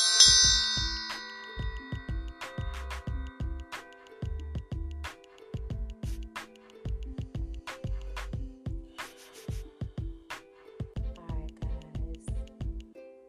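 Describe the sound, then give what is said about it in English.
A bell is struck once and rings out with bright, shimmering overtones that slowly fade, followed by a steady, rhythmic pattern of softer chiming tones and light ticks. “So, let me ring the bell real quick, you guys.”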